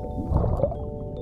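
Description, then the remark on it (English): A dolphin called Miss Dolphin vocalizes with a brief burst of chirping, high-pitched calls over a low, steady droning background, lasting about a second at moderate loudness, with no one talking. “She is making a chirping sound to let us know she's happy to see us.”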